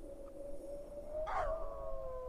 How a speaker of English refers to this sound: The unseen dogs began to howl once more. I shivered with a sick feeling of dread.